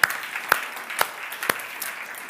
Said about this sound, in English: Why don't we just give a round of applause for our brothers and sisters in Crookston? We love you guys.